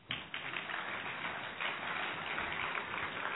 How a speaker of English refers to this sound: That was amazing. Thank you for that overwhelmingly enthusiastic applause, and I appreciate that.